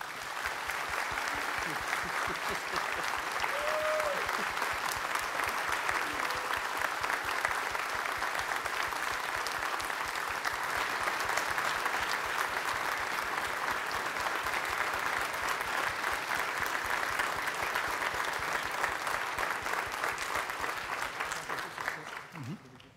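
Sustained audience applause, a dense steady wash of many hands clapping at an even loudness for over twenty seconds before tapering off at the end.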